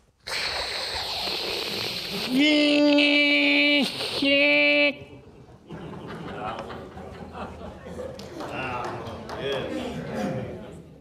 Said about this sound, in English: The dial-up modem, which took us then into something called e-commerce